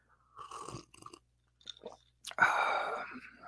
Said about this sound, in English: I'll take a sip of coffee.